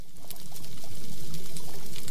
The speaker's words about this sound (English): These are snapping shrimp, and by the way, this particular recording is being used to tempt oyster larvae to new artificial reefs in South Australia.